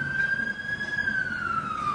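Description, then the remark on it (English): An emergency vehicle siren wails steadily, its pitch sliding gradually lower as it passes, over a low rumble of traffic. “That ambulance is going to pick you up.”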